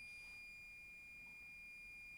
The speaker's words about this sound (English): So you might be able to hear that little beeping. That's actually my coffee being made, and it's been a long day.